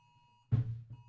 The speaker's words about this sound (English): There's an Amber Alert on my phone.